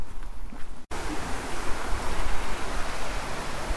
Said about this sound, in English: I'm really astonished by how high the river is. I mean, we've had a lot of rain recently, but it still surprises you when you see quite how high it is even now.